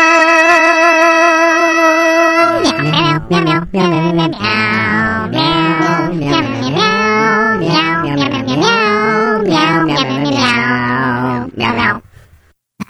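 A musical piece built from cat meows: a held tone opens, then loud, pitched meows glide up and down in a steady melodic rhythm over a low bass line before cutting off.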